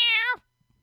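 A single loud, harsh meow from an indoor cat, a short nasal alley-cat yowl that drops in pitch at the end and stops abruptly, followed by near silence.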